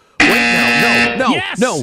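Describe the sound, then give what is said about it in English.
A loud, harsh game show buzzer blares abruptly for about a second, its flat droning tone then giving way to a voice speaking. “Oh buzzer.”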